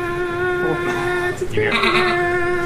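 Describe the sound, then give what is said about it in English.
A goat lets out a long, loud, strained bleat that holds steady for a couple of seconds, turning harsher and raspier partway through, like a scream. “No, it's like the screaming goat.”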